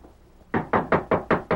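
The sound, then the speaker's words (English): Six loud, evenly spaced, heavy knocks on the wooden door of a house, following a brief quiet moment with no voices. “Open up there. Open this here door before I bust it open.”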